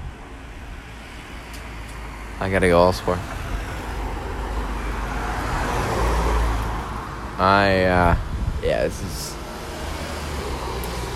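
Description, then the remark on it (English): Steady roar of passing cars and road traffic fills the background, swelling and fading as vehicles go by, with a man speaking briefly over it. “Yeah, there are way too many cars.”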